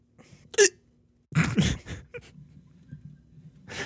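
Sharp hiccups land right up against the microphone, a single loud one followed after a pause by a quick cluster of two or three, with breathy noise in between.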